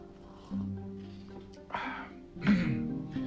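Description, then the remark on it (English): Someone clears their throat, a low rasping rumble and then a second harder, louder rasp a moment later, with no talking. “Some of this coffee might help clear my throat a little, some of this warm coffee.”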